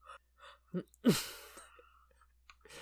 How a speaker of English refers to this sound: Hold on, I'm about to yawn.